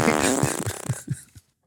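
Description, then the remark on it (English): A quick run of rapid, sputtering fart noises made by a person, loud, with rhythmic low pulses that trail off into silence after about a second and a half. “I might delete some of those 900 farts I just blasted off.”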